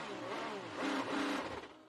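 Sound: race car engine revving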